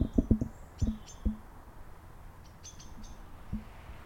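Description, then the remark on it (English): Birds chirp outdoors by a lake after sunset, with dark clouds rolling in, in short, scattered high tweets, fairly quiet, mixed with a few deeper, abrupt calls against a calm background. Nobody speaks. “Can you hear the birds?”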